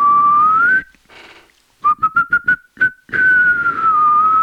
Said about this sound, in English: White people whistle, they do more song whistling.